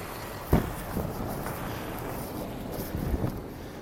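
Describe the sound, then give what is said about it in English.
A loud truck rumbles past with a steady, broad roar of engine and road noise, marked by a sharp thump early on. No one speaks. “Really loud truck.”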